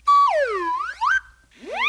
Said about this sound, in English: Anyway, we have a whole case full of props for sound effects that we can use for different situations. Okay, we have, for example, we have different kinds of whistles here.